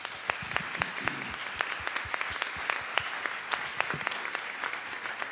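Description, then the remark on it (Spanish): An audience applauds steadily for about five seconds, a dense wash of many hands clapping with sharper individual claps popping out at a fairly even rhythm. “Creo que ustedes se merecen un gran aplauso.”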